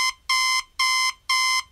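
An alarm clock rings on a Saturday morning in loud, repeated electronic beeps, each lasting about a third of a second, pulsing at a steady rhythm with short gaps between them.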